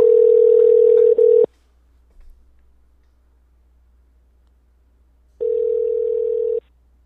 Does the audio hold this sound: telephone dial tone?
yes